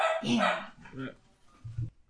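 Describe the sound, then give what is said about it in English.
A dog barks a few times in quick succession, sharp, followed by a low short woof near the end. “Huh, wasn't my dog.”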